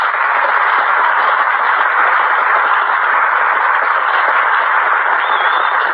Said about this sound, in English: Listen to that wind outside, will you, kiddo? Pity the poor pedestrian on a night like this. Brutal weather, isn't it?